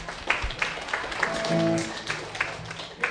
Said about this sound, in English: Yeah, clap for your library. This is great.